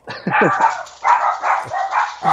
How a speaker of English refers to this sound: By the sound of the dogs, I think it's time for Mr. Roger to go get his kids.